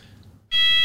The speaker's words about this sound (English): So we'll just pause alarm? For a second as we are...